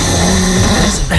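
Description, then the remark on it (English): Deep, rumbling snoring from eight fully grown men sleeping in one room of a boys' cabin at 3 a.m., a loud low rasping drone that rattles steadily through the whole second with no talking. “That is a deep, deep snore, isn't it?”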